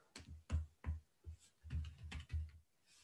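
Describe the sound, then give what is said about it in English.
Clicky keystrokes on a Polish computer keyboard, typing a search for the Palace of Culture and Science, tapping out in quick irregular bursts, several clacks clustered together with brief pauses between, no voices over them. “Oh, wait, Polish keyboard.”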